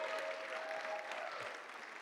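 A crowd applauds steadily, a dense wash of many hands clapping at a constant, moderate loudness throughout, with no one speaking over it.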